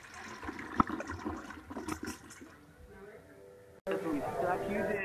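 A toilet flushes with a gurgling rush of water that swirls and drains, then a second burst of running water starts abruptly; the sounds are fairly loud.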